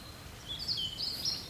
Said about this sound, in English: Look, the house martins are gathering, getting ready to fly south already.